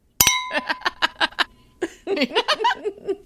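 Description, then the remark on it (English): Champagne flutes clink once in a toast with a bright, short, high shimmering tone, then rhythmic bursts of laughter and giggling follow. “Okay, so now, did you grab your champagne flute?”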